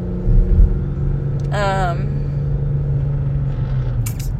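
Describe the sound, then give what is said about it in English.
A brief synthetic in-car system voice announces that no phones are connected, over a steady, low engine rumble inside a moving car, followed by a faint electronic blip near the end. “My car just decided to fucking tell me that.”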